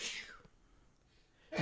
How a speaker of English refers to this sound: Bless you.